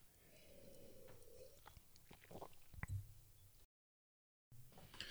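A quick sip of beer with wet mouth and swallowing noises, a short gap of silence, then faint clinks and mouth sounds, no talking.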